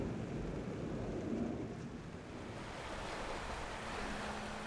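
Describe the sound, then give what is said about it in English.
Pacific Ocean waves break and wash in with a steady, broad roar of surf, the rushing hiss shifting slightly as the water churns, with no voices present. “I'm taking a picture of the ham in the Pacific when a big wave washes it out to sea.”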